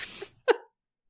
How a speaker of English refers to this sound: I was trying so hard to respond to that, but I had an epic, huge sneeze. That was the worst fucking time.